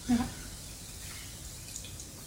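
Water being poured and sipped: a short liquid plink at the start, then a soft, steady trickle, quiet, with no talking.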